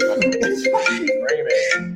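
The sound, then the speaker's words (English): A cell phone ringtone plays a bright, busy melody for a couple of seconds, loud, with a steady tone running underneath the shifting notes. “Oh, look at this. We got my phone. It's you.”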